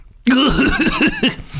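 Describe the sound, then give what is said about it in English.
A loud burst of raspy, voiced coughing from someone getting up, several quick hacks run together over about a second before trailing off. “… gets up whilst coughing.”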